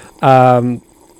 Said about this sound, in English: That actually is him sipping water. He's not just adding that in post.